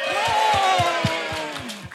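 An audience cheers loudly and steadily, many voices whooping together over a run of regular low thumps that sound like rhythmic clapping or stomping, cheering to vote for which of two people has the biggest Bible.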